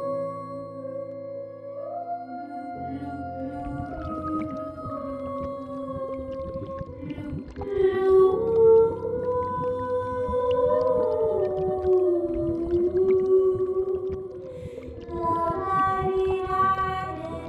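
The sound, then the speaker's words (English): Whale song: long, gliding moans that rise and fall in pitch, layered with harmonics over a low rumble, with higher, brighter calls joining near the end, steady and fairly loud throughout. “Her song became happy and upbeat and drew in creatures from seven seas away.”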